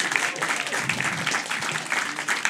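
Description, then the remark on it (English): Steady audience applause for the servers and bartenders fills the whole moment, a dense crackle of many hands clapping at once with a bright, even texture and no pauses. “A round of applause for your servers and bartenders.”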